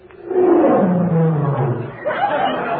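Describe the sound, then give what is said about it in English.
A loud roar, presented as the Tigris River roaring, sustains for about two seconds, sliding downward in pitch, then breaks into a rougher, slightly quieter growl that continues to the end. “That's the Tigris. It roars.”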